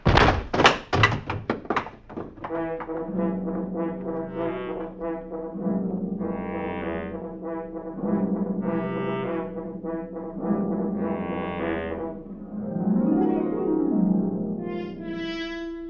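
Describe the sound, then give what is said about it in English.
A rapid series of heavy, dull blunt blows lands loud in the first two seconds, a father and his daughter being bludgeoned to death at their small house on the outskirts of the village of Cratfield in Suffolk, followed by a low, sustained droning tone that swells and fades. “A father and his daughter were just bludgeoned to death.”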